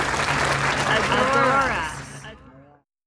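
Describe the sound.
A crowd claps in a steady, dense wash of applause, with a few voices cheering over it, before the clapping tapers off and fades out near the end.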